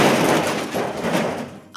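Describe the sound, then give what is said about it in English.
A loud, noisy crash of a breaking glass display case holding newest designs spreads into a long scattering clatter that slowly fades, ending with a sharp ringing clink as a last piece lands. No one speaks. “What have I done? That's my glass display case with my newest designs.”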